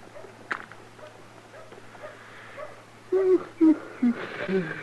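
A dog whimpers in three or four short, high, whining bursts near the end, after a quiet stretch with a steady low hum and faint rustling.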